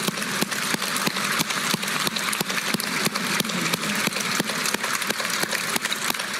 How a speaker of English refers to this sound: One final standing ovation. I thought that was really cool.